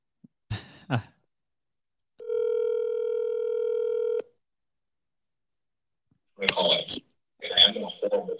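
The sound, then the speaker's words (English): A couple of short taps, then a single steady electronic phone tone, buzzy and mid-pitched, lasting about two seconds, as a phone call is placed, followed after a pause by muffled bursts of voice and noise. “I'm going to call her.”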